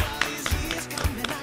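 Sharp little handclaps snap in time over a song's steady beat and low bass thumps, a few crisp bursts spaced across the bar, with no one talking.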